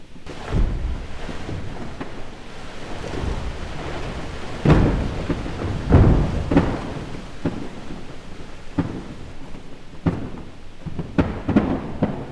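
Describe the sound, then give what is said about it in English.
Collapsing shelf ice on the Southern Ocean, made as floes rub against each other: a continuous deep rumble broken by loud, sharp cracks and booming thuds at irregular intervals, some swelling into rolling roars. No voices are present. “The next one, collapsing shelf ice.”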